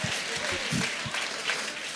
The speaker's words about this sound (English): As long, yeah, you ought to clap for that.